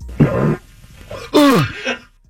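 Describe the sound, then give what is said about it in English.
A human voice imitates a whale giving birth: a strained low groan, a brief pause, then a louder wailing moan whose pitch slides downward, ending in a short, softer groan. “If you missed any of the show earlier, here's what it sounds like when a whale gives birth.”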